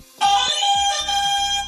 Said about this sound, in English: So let me hear your buzzers